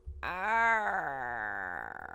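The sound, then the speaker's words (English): A voice imitates a mournful crow call: one long, drawn-out wail that swells slightly, then slowly sinks in pitch and trails off into a wavering, raspy flutter. “I'd like to hear the Mournful Crow, though, too.”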